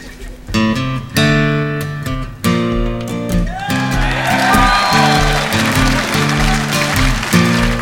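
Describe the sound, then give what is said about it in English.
Live acoustic guitar playing opens alone, then a crowd breaks into loud, sustained applause a few seconds in, the clapping continuing beneath the music until the end. “All right, everyone's clapping like they knew it.”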